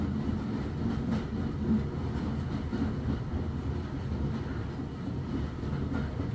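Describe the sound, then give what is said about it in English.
A train rumbles steadily across a high arched railway viaduct that curves through 120 degrees, a dense low roar with faint rhythmic clatter, continuous throughout with no voices. “All to carry this magical train.”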